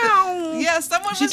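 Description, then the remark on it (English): A person's voice imitates a cat's meow: one drawn-out, whiny vocal sound that bends down in pitch and then rises again, fairly loud, lasting just over a second. “No, my cat talks to me, you guys.”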